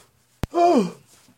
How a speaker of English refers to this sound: Oh, there's my first yawn of the morning, and I've been up for an hour and a half.